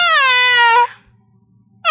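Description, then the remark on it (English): A voice imitates a wailing, screaming child: one loud, high, slightly falling cry lasting under a second, then a brief silence before another cry starts. “Well, I feel like I'm passing each screaming, yelping, mewling child.”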